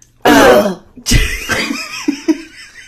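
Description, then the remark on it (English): A muffled, closed-mouth burp gives a short, low, throaty rumble, surrounded by bursts of breathy laughter and vocal noise. “That was the kind that my mouth was closed, so it was just trapped in my mouth.”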